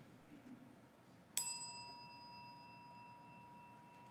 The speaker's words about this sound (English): As we listen to the chime, let us remember our connection to each other and to the world around us.